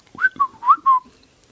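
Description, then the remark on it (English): The droid R2-D2 beeps and whistles in four quick electronic chirps, warbling up and down around a high pitch, each about a fifth of a second, heard alone with no talking. “On R2-D2 and C-3PO, on the edges of the room, R2 beeps.”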